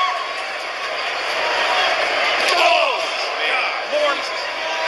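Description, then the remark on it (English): Two sharp metallic steel chair shots from the Undertaker strike a wrestler during a wrestling match, cracking out a second or so apart and ringing briefly over a loud, steady crowd roar. “More noxious, hazardous chair shots from the ruthless Undertaker.”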